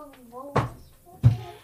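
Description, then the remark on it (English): A child bangs on a door: two heavy thumps land about half a second apart, with a voice murmuring faintly in between. “I think my child is banging on the door.”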